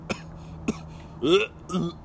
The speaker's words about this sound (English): Was that a cough or a vomit or what? It was me reacting. You couldn't decide what was going on.